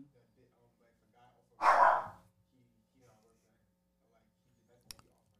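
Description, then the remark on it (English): A single loud bark from a dog at home bursts out, followed by a brief sharp click near the end; faint murmuring voices sit low in the background otherwise. “sorry y'all, I have my dog in the crib.”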